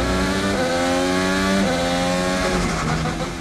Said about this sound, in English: In a Formula One or any road race, you're going to hear the car shifting up through the gears and down through the gears a lot more often.